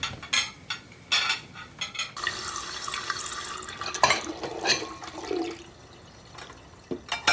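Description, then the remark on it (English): Water gushes steadily from a tap into a sink as someone does the dishes, a broad hissing rush broken by occasional clinks and splashes, with no one speaking. “I'm just gonna go do the dishes.”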